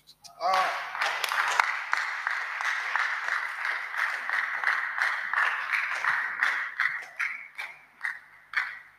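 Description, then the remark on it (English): An audience claps together in a dense, sustained wash of applause that fills the whole stretch, loud, with a brief voice heard at the very start. “The way they are clapping, it is even grieving my spirit.”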